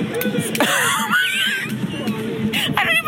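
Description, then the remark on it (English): A man screams loudly and continuously in strained, warbling bursts, his voice rising and wavering throughout, with a brief break partway through before the shouting resumes. “but the way he's screaming is hilarious.”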